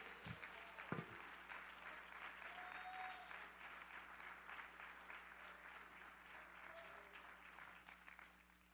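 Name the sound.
audience clapping hands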